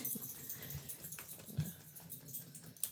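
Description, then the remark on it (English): A dog in the room, a female, makes soft, scattered noises, a few brief muffled yips or whimpers among light pattering and shuffling, with no one talking over it. “Also with us is our dog in the room this week, so if she makes any noise, it'll be much louder.”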